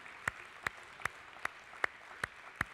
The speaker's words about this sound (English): Let's give our fathers another hand clap. God bless you today. Happy Father's Day, men.